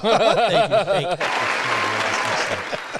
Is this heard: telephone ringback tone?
no